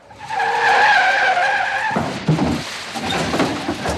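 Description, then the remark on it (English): Car tires screech in a loud, sustained skid lasting about two seconds, followed by a rough rumble and scraping noise as the vehicle slides to a stop. No voices are present. “If I can find, like, a skid sound, like a car skidding sound, I'm going to put it right there.”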